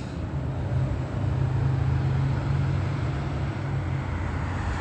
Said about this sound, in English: That's 4Gen Logistics. That's a large truck. Large trucking company.